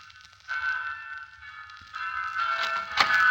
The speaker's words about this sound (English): the bells have started.